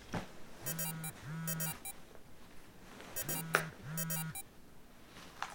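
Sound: alarm clock going off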